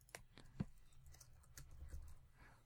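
Soft, irregular clicks of typing on a computer keyboard, a handful of quiet keystrokes spaced unevenly over a low background hum, with no one speaking.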